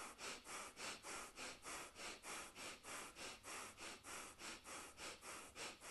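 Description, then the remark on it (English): Rapid, rhythmic breathing done as a breath-work exercise to express excitement, quick in-and-out breaths repeating steadily about three times per second, fairly loud, with no talking. “Let's try excited breathing.”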